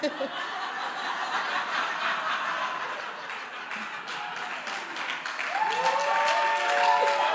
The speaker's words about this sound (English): Why are we applauding this?